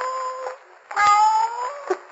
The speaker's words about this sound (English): What was that? It sounded like a cat. Came from that wine vat.